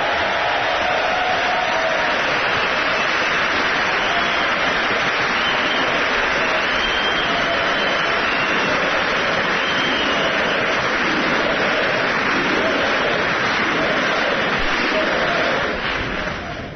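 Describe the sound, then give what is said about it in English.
A large audience at a State of the Union address applauds loudly and continuously for about seventeen seconds, a dense roar of clapping with scattered cheers mixed in, barely easing before trailing off at the very end. “Oh, where's the super applause line?”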